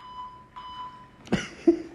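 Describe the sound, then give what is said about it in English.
A steady, high-pitched censor bleep covering a swear word sounds for just over a second, then cuts off and gives way to a brief burst of noisy clatter and a short squeak. “He's trying to beep out the swear words.”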